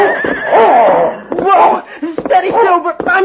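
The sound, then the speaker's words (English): A horse, startled by a dog racing out from between two buildings, gives a loud, quavering whinny, then lets out a few more agitated snorts and cries mixed with excited human voices. “Then a dog raced from between two buildings and startled the horse.”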